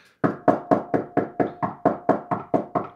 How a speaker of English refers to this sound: Man, that guy knocks a lot. We better let him in.